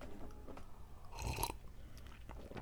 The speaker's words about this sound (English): This is what it sounds like when I put a DVD into the computer.